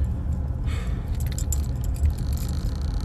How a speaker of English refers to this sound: But yeah, y'all, at the end of the day, hope my car ain't too loud.